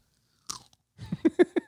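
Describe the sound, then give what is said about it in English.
A single close-up bite into an organic strawberry is followed by a short pause, then several wet, crunchy chews in a steady rhythm, loud and right at the microphone, with no talking. “As you chew that strawberry.”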